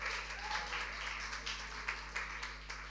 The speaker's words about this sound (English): Big hand of applause, please.